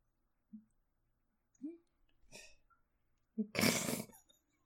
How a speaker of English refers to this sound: This is so much. The Wookiee panting is a lot.